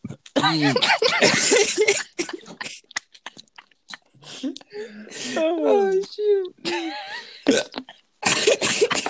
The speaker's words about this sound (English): Freak, bro, now I have hiccups.